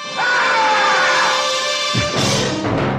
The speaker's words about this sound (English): And then we hear a scream.